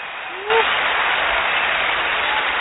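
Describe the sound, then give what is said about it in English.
After a brief quiet moment, a steady wash of crowd applause starts abruptly and continues at an even, dense level, sounding like a canned clapping sound effect. “Let me put a round of applause, because she's going to go tell her night.”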